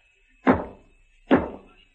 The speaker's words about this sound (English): What are you banging on the wall for? You hear that? Yeah. Somebody knocked back. Where'd it come from? The next room, I think.